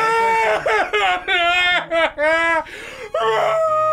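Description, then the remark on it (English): A beast cries and screams in a loud, continuous run of high, strained wails that swoop up and down in pitch, broken only by a few brief gaps. “Let's go into the beast crying and screaming.”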